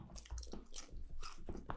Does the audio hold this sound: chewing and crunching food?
yes